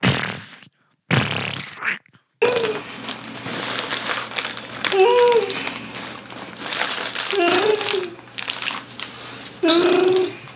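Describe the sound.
A voice imitates a fart with the mouth, blowing several wet, sputtering raspberry bursts with low buzzing pitch and brief pauses between them, fairly loud, with faint crackly noise underneath.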